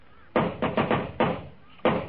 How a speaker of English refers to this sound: In a minute, he'll knock on that door. Oh, if you're going to knock, knock.